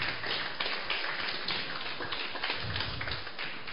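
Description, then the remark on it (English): A crowd applauds steadily, a dense, crackling patter of many hands clapping at once, holding a fairly even loudness for a few seconds with no voices standing out. “Let's clap for them.”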